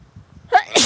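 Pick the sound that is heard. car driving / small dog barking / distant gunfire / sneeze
sneeze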